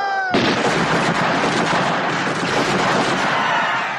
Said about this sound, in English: And it's not just one shot. They open fire and they continue firing at this screaming, panicked crowd, totally defenseless, and they shoot them down.